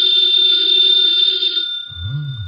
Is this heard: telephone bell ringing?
yes